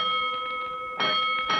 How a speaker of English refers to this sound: He's all ready to report to Three Ones at 4 o'clock sharp for duty with the second platoon, when suddenly the call bell at headquarters begins to ring.